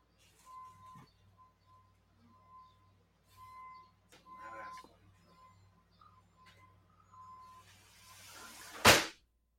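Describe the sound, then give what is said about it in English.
Faint, intermittent beeping of a reversing truck somewhere outside, a thin steady tone coming in uneven pulses, with a few soft clinks and a sudden loud burst near the end. “Yeah, I think there's like a truck or something outside.”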